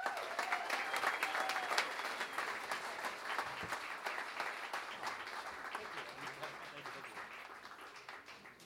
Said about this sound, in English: Guys, give a big round of applause for Jin.